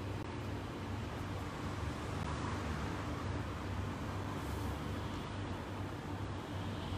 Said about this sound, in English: While resting there with the breath and the body, you might also notice the sounds of the present moment. The sound of the cars, traffic outside, the very gentle hum of the projector, the sound of my voice.